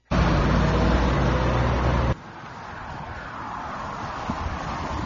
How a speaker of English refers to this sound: Clocking the police officer going into the school zone that was 15 miles an hour posted. So the police officer was in his patrol car.